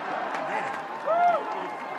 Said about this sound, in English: Aside from the fact that people are cheering.